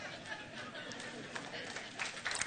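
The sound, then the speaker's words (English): A church audience applauds steadily during a service, a dense crackle of many hands clapping at once with a few louder bursts near the end, mixed with a faint murmur of crowd voices. “No, don't applaud for that.”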